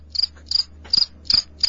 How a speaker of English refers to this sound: We do need someone here to play the cricket sound effect for you. Just leave it on loop.